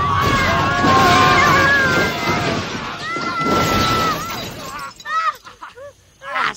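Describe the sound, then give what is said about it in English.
A loud truck flipping over and crashing: several seconds of grinding, shattering noise with shrill metallic screeches, then the din drops away into a few scattered squeals and clatters. “But it has the ability to flip a truck.”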